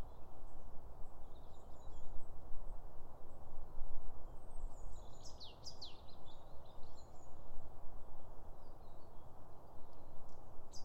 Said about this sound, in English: And a brief buzz from a wren. Another robin